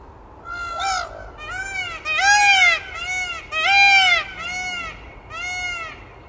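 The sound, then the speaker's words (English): A peacock calls repeatedly, heard on a walk with a foster dog, Riley: about seven loud, harmonically rich wails, each rising and falling in pitch, in quick succession with short gaps, over a low steady background rumble. “This is the peacock sound.”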